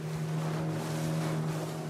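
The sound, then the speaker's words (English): A small motorboat's engine drones steadily on a 70-kilometre crossing of open ocean, a constant low hum with wind buffeting the microphone and water rushing beneath the hull. “But using a child to drive a boat like this, 70 kilometres across open ocean, is madness.”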